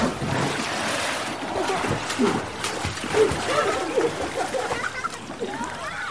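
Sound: splashing water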